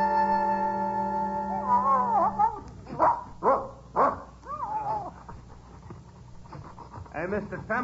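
A dog gives a quick run of three or four sharp barks in the middle, with panting and whiny yelps around them and a sustained tonal background at the start.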